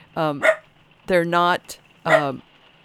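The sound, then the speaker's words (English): A dog named Gracie barks three times in quick succession, fairly loud, each bark a short, tonal, slightly drawn-out yelp separated by brief pauses. “They're not, Gracie's confirming that, my dog.”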